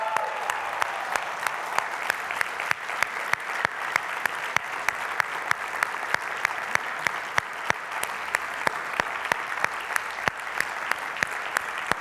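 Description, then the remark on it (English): An audience at a worship service breaks into sustained applause for the standing veterans, a dense wash of many hands clapping steadily at an even level for the whole stretch, with a few sharper individual claps standing out. “Give them a hand.”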